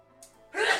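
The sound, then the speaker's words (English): A single sneeze: a short, breathy intake followed by a sudden, loud, explosive burst of air, with no one talking over it. “Bless you.”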